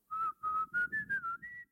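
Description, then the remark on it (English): Someone whistles a short melody of a song from the film Barnyard, a string of clear notes in a bouncing rhythm that steps gently up in pitch, with no talking over it. “Yeah, just whistle for us,”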